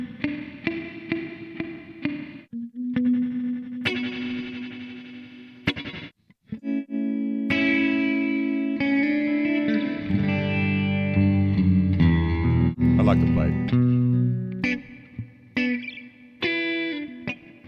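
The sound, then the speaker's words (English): An electric guitar strums and rings out chords through a heavily processed effects chain, the reverb shifting from a tight plate sound to a vast, cathedral-like wash. There is no talking. “And we can go from a plate reverb to a cathedral.”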